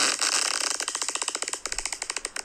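A crackling fart sound begins as a steady buzzing rasp, then breaks into a rapid series of short popping bursts with small gaps between each crackle, fading unevenly at the end.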